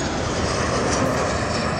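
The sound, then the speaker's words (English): A steady, loud airplane engine roar with a broad, constant hum and whoosh, holding at the same level throughout without any talking. “Have you ever ridden in an airplane?”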